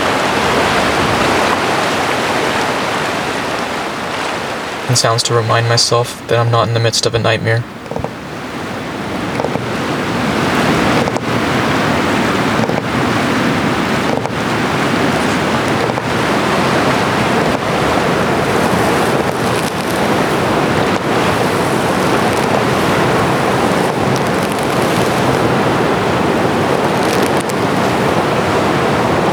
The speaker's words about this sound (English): All that could be heard was the river.